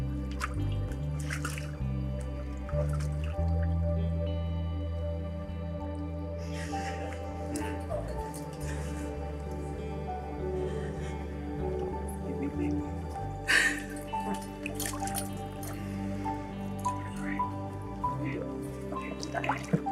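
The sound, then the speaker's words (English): Water drips and splashes intermittently in irregular bursts as a mother gets the water, over a steady low droning background with faint murmuring voices. “His mom's gonna get the water.”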